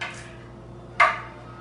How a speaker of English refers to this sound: And what we're going to do is we're going to activate them by just roughly chopping them like this.